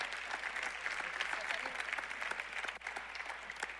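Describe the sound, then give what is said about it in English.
A church audience claps in sustained applause for a visiting crew after a prayer during a service, a dense, crackling wash of many hands that holds a steady loudness for the full few seconds, with no clear voices above it. “And all God's people said, another round of applause for this crew.”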